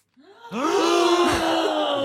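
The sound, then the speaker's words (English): A single loud, dramatic gasp from one voice: a quick rising intake that swells into a strained, drawn-out cry held for over a second, with no other talking. “Suddenly, I gasped.”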